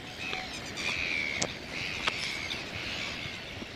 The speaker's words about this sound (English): And in front of us is a very busy, thriving red-billed gull colony.